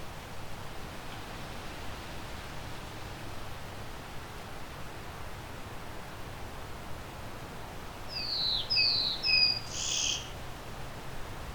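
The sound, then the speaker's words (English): A wood duck gives a short series of about four rising, squealing calls near the end, clear above a steady hiss of background noise with no one talking. “Okay, I'm hearing something else. Could be wood duck.”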